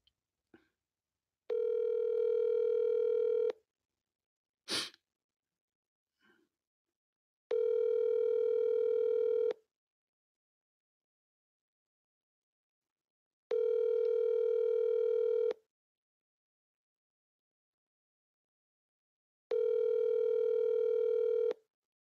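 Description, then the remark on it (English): A phone line rings unanswered: four steady, buzzy ringback tones, each about two seconds long, repeat at even intervals with silence between, plus a brief click near the start. “Nope, nobody's going to answer on this number.”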